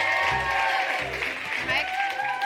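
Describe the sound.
A steady wash of audience applause for a volunteer called up from the audience, loud and continuous for a couple of seconds, with cheering voices mixed into the clapping.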